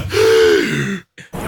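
A sharp, loud gasp, breathy and partly voiced with a falling pitch, followed by a brief silence and a couple of short breathy bursts.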